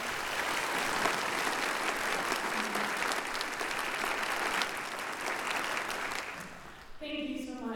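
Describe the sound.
Sustained applause from a large group at Church of the Palms, a dense, steady wash of clapping for several seconds that fades slightly before a voice begins speaking at the end.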